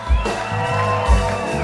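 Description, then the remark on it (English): A live crowd cheers and shouts continuously, with overlapping whoops and yells forming a dense, steady roar that swells briefly at a couple of moments. “You guys having fun out there, huh?”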